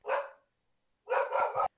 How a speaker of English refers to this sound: Oh, they're getting mad. The dogs are getting mad. I'm accusing them.